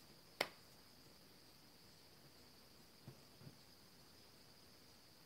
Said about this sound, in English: Hey, bugs. Some kind of bugs making noises. Still summer.